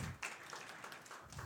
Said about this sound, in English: Okay, big round of applause for